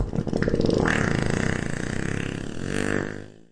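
A long, buzzy fart sound effect, one of the downloadable farts from farthub.com, rasps on for about three seconds, holding a steady loudness while its pitch wobbles, then tapers off at the end. No one speaks over it.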